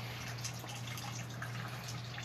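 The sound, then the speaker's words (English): Faint, irregular drips of water from a leaking air conditioner land every half second or so, set against a steady low electrical hum and soft background hiss. No one speaks. “If y'all hear that drip in the background, yeah, our AC's leaking, but like I said last time, the maintenance from this complex, they don't care.”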